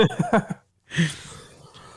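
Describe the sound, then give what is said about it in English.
A few short voiced bursts, then a brief pause and a single harsh, breathy cough that trails off into quiet breathing. “I think this is the last day of the cough, I swear.”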